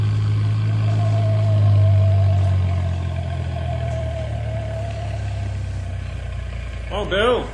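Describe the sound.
A soup truck's engine runs with a steady, heavy low rumble and a faint whine above it, continuous; near the end a voice briefly speaks over the engine.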